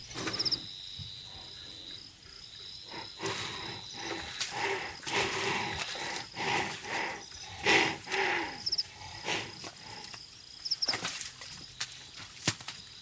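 A northern white rhino vocalizes in a series of deep, breathy snorts and grunts, repeating irregularly over several seconds, with a steady chorus of insects droning in the background.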